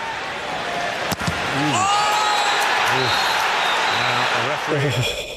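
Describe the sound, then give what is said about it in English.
An Arsenal player lets out a sharp, high cry of pain in football match footage, over a constant roar of stadium crowd noise, following a brief thud, with further shouted voices rising and falling afterward; the challenge drew a straight red card. “I'm just going to play the footage of it here, and you can hear the scream from the Arsenal man.”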